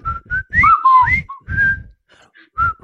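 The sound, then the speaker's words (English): A person whistles the Colonel Bogey March, a brisk, march-like melody, the clear notes rising and falling in short phrases with brief pauses, accompanied by soft breathy puffs. “On Monday, every guy at school is walking around whistling the Colonel Bogey March.”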